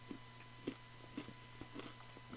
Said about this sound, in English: Oh, what are you, munching on? Pizza. Oh. Oh, so good.